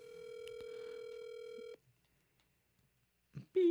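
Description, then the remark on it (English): A loud, steady electronic telephone tone from a call placed on speakerphone holds for under two seconds and cuts off, followed by a near-silent pause, a brief blip, and then another wavering phone tone starts; the call is forwarded to an automated voice. “Your call has been forwarded to an automated voice.”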